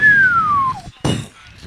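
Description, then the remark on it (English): A voice imitates an E30 car spinning out as it shifts from second to third coming off a roundabout in the rain in Trafford Park: a high, whistly squeal slides steadily downward for under a second, then a short pause and a harsh, noisy burst like a crash. “So I was giving him an hand prepping and driving back through Trafford Park and it just started raining and went from second to third coming off a roundabout and it kind of just went...”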